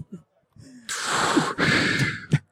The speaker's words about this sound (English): Please, press it to your lips and exhale.